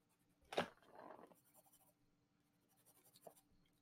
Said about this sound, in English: I'm like doodling. I find that it comforts me to have a pencil in my hand.